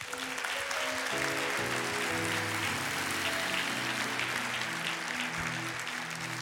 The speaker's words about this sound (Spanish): Un aplauso a Cristo.